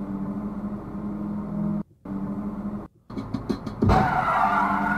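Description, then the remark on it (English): A car engine drones steadily, cutting out briefly twice, then tires skid and a loud, harsh burst of noise erupts near the end, from a video of a real car crash. No one speaks. “Yeah, that's okay, definitely yeah, a real car one. Crashes made that into a video game.”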